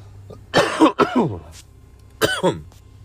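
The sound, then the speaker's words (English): Harsh coughing from someone smoking a joint containing hash: two quick raspy coughs back to back, a short pause, then one more hacking cough, with no talking around them. “Having a hard time because I'm hitting a part of the J that's got some hash in it.”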